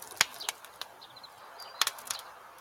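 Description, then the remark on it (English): A campfire crackling: sharp, irregular pops and snaps over a soft steady hiss, with a cluster of louder cracks near the end and a few faint whistling tones from the burning wood. “It is a campfire, yes.”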